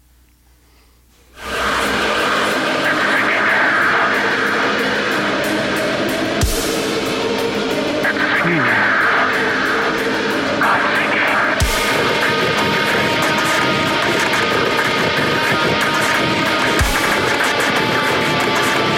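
After a brief quiet moment, a loud, dense new rock single by a band kicks in with a wall of distorted sound, sustained tones and occasional heavy crashing hits, with no talking over it.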